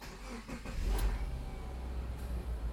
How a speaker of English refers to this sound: And my car is apparently running on cheer juice for the moment, so we don't even need to stop for gas.